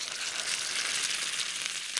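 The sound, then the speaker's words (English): Steady sizzling of a steak or chop frying in hot fat in a pan after it has been in the pan for a while, with a fair amount of fat in the pan; a dense bright hiss with fine crackles, small pops and liquidy bubbling throughout, no voices. “See, what's interesting about that sound there, like that, I know just from listening that is after the steak or the chop has been in the pan for a while, because you can hear that there's a fair amount of fat in the pan.”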